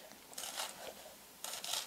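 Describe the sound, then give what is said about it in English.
A sharp knife finely dicing a shallot on a cutting board using the rowboat technique: two short flurries of rapid, crisp tapping, fairly soft, with a brief pause between them and no voices. “I'm going to do the rowboat technique, and this is my fine dice.”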